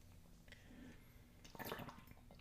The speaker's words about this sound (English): Little water break.